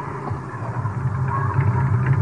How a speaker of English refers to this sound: There's a car coming. Could be them.